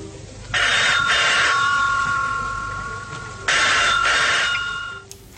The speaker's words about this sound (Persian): اومدم رو به خونه با دل افسرده و خون، باز دیدم زنگ میزنه مثل همیشه تلفن.